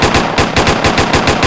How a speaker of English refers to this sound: This is a gunshot.